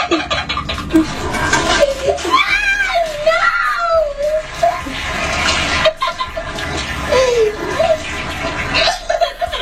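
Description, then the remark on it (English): A toilet flushes with a loud, steady rush of water while a young boy, his head held down in the bowl by his mother with his arms pulled behind him, screams and wails in rising, wavering cries, with a few other voices underneath. “This mother of a young boy decided that it was going to be funny and cute to have one of her other family members film her dunking his head in the toilet with his arms pulled behind him and then flush it while his head was in the damn bowl.”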